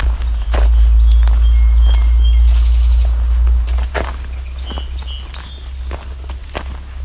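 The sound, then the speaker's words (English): Song sparrows sing in short bursts of thin, bright notes, fairly faint, over a steady low rumble and the scuff of footsteps walking outdoors. “Coming up on some song sparrows.”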